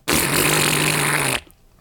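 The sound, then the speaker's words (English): A voice imitates a big fart with one loud, sustained buzzing raspberry lasting over a second, then cutting off abruptly into near silence. “I'll make a big fart sound.”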